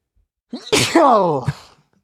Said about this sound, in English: I'm about to sneeze. Go for it.